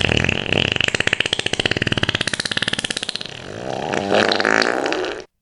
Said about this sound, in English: Because the fart bag will just make me remind me of the night of the long fart.